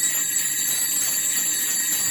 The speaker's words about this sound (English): And, oh, what's this? Ooh, sleigh bells. I like sleigh bells,